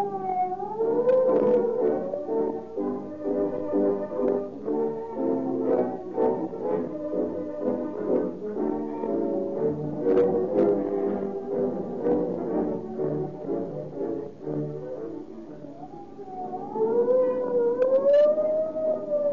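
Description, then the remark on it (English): A loud police siren wails as police cars go tearing past, its pitch sweeping up and down, then dissolving into a dense, blaring wash before the rising-and-falling wail returns near the end. No one speaks. “When you hear the scream of the siren and police cars go tearing past”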